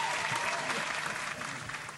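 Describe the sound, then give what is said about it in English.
A dense wash of studio audience applause, many hands clapping together in a steady, loud roar that stays fairly even and tapers slightly toward the end. “See the clap sign.”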